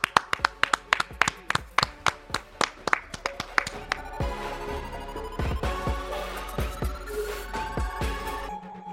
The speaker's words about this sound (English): Clap it up.